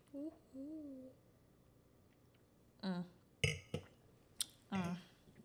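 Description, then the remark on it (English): A few sharp, bright clinks of wine glasses in a toast ring out in quick succession, mixed in with short bursts of voices and a quiet pause beforehand. “Can I get a little cheers for the girls? Cheers.”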